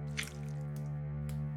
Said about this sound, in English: We're on the last step. Now let your blood drip into the circle and repeat after me. Ready?